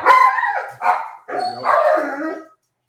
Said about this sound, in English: The dogs agree too. What's happened? They're mad at the washing machine.